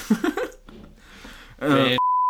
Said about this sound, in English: I'm gonna beep that shit out.